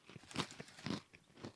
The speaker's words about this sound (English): These have a lot of flavor. See, these are good. There's a good crunch, and it's just the right amount of honey mustard so you can taste the pretzel but also get the seasoning.